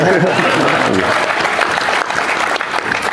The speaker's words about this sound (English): You can clap for him.